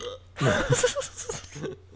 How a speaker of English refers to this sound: Yeah, man, burping. America's greatest pastime.